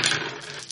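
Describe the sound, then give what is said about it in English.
A brief clatter of dice tumbling across a tabletop during a role-playing game, with a sharp burst of rattling at the start that settles into lighter clicks, fairly loud. “Okay, so three dice for all of you.”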